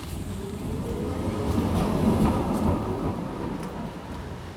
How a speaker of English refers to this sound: I wonder if trams bear names like boats do. Does this tram have a name?